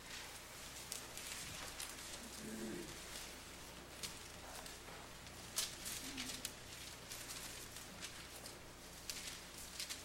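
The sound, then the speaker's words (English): Many book pages turning at once in a church sanctuary as people turn to Acts 28, a steady wash of soft papery rustles and crisp flips overlapping for the whole stretch, with a few sharper swishes standing out and no talking. “I like the sound of pages turning in the sanctuary.”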